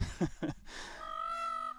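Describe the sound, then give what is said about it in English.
A peacock calls: two short, harsh squawks followed by a long, drawn-out nasal wail, fairly loud, with no talking over it. “We've got the peacock again.”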